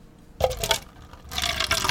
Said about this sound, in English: I'm going to pour one out from home.